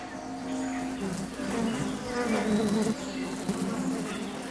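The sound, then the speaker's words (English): A steady buzzing of tiny sweat bees fills the whole stretch as they crawl over the stigmas of arum flowers, spreading pollen, a continuous droning hum that swells slightly in the middle, with faint chirps of other insects or birds in the background. “The bees seem to find some reward on stigmas, for they crawled all over them, distributing the pollen they'd brought with them.”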